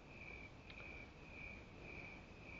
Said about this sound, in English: I don't know if you can hear it, but the crickets are chirping. The grass is being watered. It's a good time. Real good time.